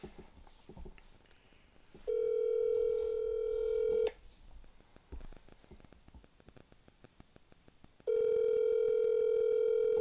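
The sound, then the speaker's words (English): A phone ringing through a speakerphone: two long, steady ringback tones, each about two seconds, separated by a pause, over faint crackly background noise with no talking. “She's gonna answer. You think so? Yeah, on the next ring.”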